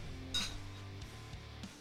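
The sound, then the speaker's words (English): A single sharp clink of a pint glass with a brief high ring, followed by a few faint knocks over a low, steady background hum. No one speaks. “It's a pint glass.”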